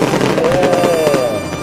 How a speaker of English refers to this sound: Look at the fireworks.